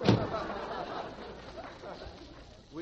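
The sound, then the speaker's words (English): A single loud knock on a door lands right at the start, followed by a low murmur of voices and room noise. “Did I hear somebody knock? Yes, I heard somebody knock.”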